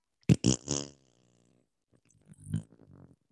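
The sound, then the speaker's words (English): A voice blows a quick run of three buzzy mouth-fart noises, fairly loud, then after a pause a softer, sputtering raspberry trails off. “You can't even get a fart sound out without your audio kiboshing it.”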